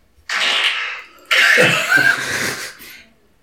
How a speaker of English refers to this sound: Man who tries to cover his fart with a cough.